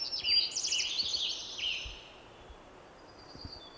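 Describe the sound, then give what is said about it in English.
A hermit warbler, recorded at H.J. Andrews Experimental Forest in 2017, sings a high, buzzy series of rapid trilled phrases over the first two seconds, clear, then fades into quiet forest ambience with a faint buzz. “This is a bird that is called hermit warbler.”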